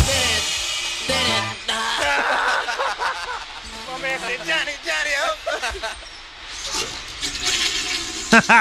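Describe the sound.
A toilet flushes with a long, loud rushing of water, while voices snicker and laugh over it.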